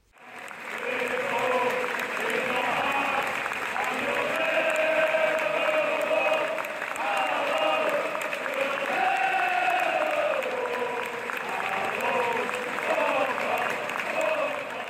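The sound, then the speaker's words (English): A large stadium crowd at Anfield applauds steadily for the whole stretch, rising to its feet in the 7th minute in tribute to the late Dan Kay, former Echo journalist; a dense wash of clapping with scattered shouts and voices rising and falling within it. “Also, a touching moment on the 7th minute when Anfield rose to its feet in applause for the late Dan Kay, the former Echo journalist who sadly passed away early this month.”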